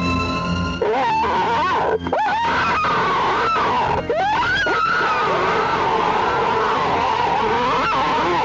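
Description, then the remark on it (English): A loud, scary monster shriek: warbling, wavering screeches sweep up and down over a rough, growling undertone, broken by a few sharp bursts, then a sustained howl with no talking. “That is a pretty awesome, scary monster yeah, noise. That's terrifying.”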